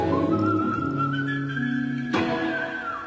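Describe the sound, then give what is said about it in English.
A man whistles a slow melody of sustained, gliding notes, clear with no talking; a brief sharp knock cuts in partway through before the whistling carries on. “Okay, so he whistles. Very professional.”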